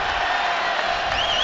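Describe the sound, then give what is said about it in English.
A big crowd of Celtic football fans roars and cheers in a steady, dense wash of noise as the players raise a trophy above their heads, with a whistle-like rising tone and whoops cutting through near the end. “You can hear the Celtic fans cheering as all the players raise that trophy above their heads.”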